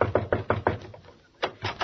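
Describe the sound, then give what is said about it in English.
A quick series of five firm knocks on Veronica Lake's dressing room door, a short pause, then a few more raps. The knocks are fairly loud, with no one talking. “All right, there's her dressing room over there. I'll knock on the door.”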